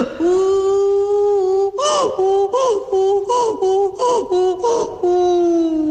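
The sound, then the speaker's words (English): A person imitates a donkey braying: a long, loud nasal wail gives way to a rapid series of about eight rhythmic, gasping hee-haw pulses, then settles back into a held tone. “Is that the sound that a donkey makes?”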